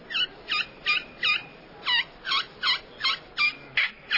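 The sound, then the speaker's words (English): About ten sharp, high whistling turkey kee-kee notes played on a glass friction call, with the striker held at the 1:30 position. The notes are evenly spaced in a steady rhythm, clear, with no talking. “On glass is what you really want to look at, but here's 1:30. Kiki.”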